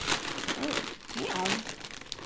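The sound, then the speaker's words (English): A bag of Takis chips crinkles and rustles continuously for a couple of seconds, with a faint voice murmuring briefly underneath the crackling plastic. “And then we're going to be eating it with Takis.”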